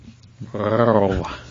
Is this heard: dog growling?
yes